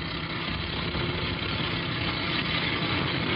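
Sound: truck engine idling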